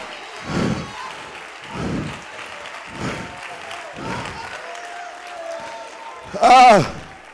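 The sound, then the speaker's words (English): An audience claps, with the applause swelling in steady surges roughly every second over a constant crowd din, then a loud vocal cry rises above it near the end. “Oh, somebody clap now.”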